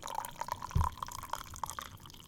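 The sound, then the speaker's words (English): Hot water pours into a French press for a second cup, a bubbly, gurgling trickle of liquid blips with a soft low thump partway through, no voices. “got to get the French press going here.”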